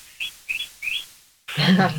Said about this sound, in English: Here's some sweet birds.